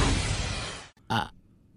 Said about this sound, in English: Excuse me, I burped.